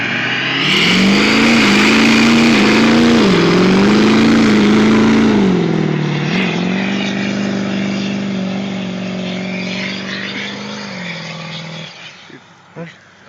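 A modified diesel truck engine, put together by its owner, runs loud with a deep, steady drone while vaporizing fuel, its pitch wobbling slightly with the throttle before it abruptly cuts off near the end, leaving a few faint clicks.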